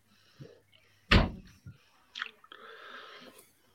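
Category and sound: household object, door being closed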